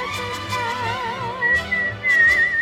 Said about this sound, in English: Ooh, that is a very impressive whistle.